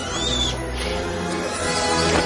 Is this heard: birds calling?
yes